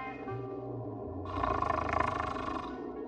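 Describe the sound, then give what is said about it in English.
Low, rumbling snoring with a rough, vibrating texture that swells into a louder, raspy, breathy snort partway through, then settles slightly. No one speaks. “I mean, I hear snoring, but there's nobody here.”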